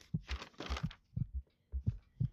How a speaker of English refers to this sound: I can feel my heartbeat stumping.